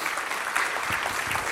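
A large crowd claps steadily, the applause dense and sustained across the whole moment, filling the room with a continuous wash of hand claps.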